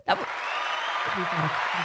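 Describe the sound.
A crowd cheering sound effect bursts in suddenly and holds as a steady, loud roar of noise, with a voice starting to talk over it partway through.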